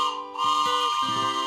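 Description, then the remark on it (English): The Bible train's whistle blows a sustained, chord-like tone with rich harmonics. The pitch shifts in a few steps over about a second and a half, staying steady in loudness, with no voices. “That's the Bible train.”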